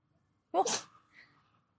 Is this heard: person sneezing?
yes